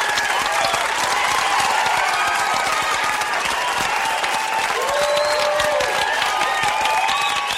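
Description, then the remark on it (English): A large crowd gives fake, overenthusiastic applause, people coached by Jones how to act: a dense, steady roar of clapping that never lets up, with scattered high whoops and whistles rising over it. “The fake overenthusiastic applause is disturbing to Ryan.”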